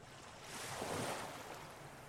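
A single ocean wave swells and breaks on the shore, a broad rushing hiss that builds, peaks, then washes back into steady surf. No voices.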